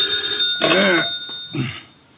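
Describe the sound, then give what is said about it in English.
An old-fashioned telephone bell rings in two short bursts separated by a brief pause, fairly loud, with no one talking. “Oh, dear, who moved that phone?”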